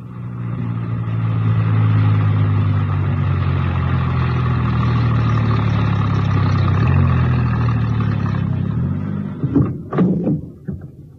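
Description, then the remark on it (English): A van engine drones steadily as it drives into a small printer's yard on the west side of a town, a low, rumbling hum for about nine seconds, then the engine cuts out and a few short clunks and knocks follow. “My star operator was enjoying himself hugely and whistled happily as he drove the van into a small printer's yard situated on the west side of the town.”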